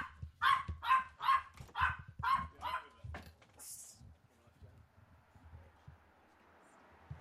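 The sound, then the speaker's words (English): A small dog barks in a quick, loud run of about six sharp, high-pitched yaps, then falls quiet, leaving faint background noise; the dog is worked up by a house move and a bed being delivered. “in the middle of a podcast, my little dog is going crazy because I'm moving house and having a bed delivered.”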